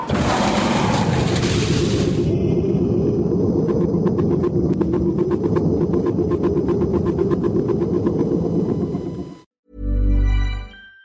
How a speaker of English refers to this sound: Evacuation procedure initiated. Shuttle set for launch. Airlock will be opened in 3, 2, 1.